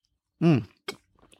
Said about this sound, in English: But now what I'm going to do is have a sip of this. Oh, I brewed this a little bit ago, and it's not even Aldi's coffee.